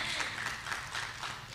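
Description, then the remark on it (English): An audience in Yankton applauds a couple still together since getting back together in 2009: a dense wash of many hands clapping steadily at moderate volume, continuous throughout. “Yeah, you can applaud that.”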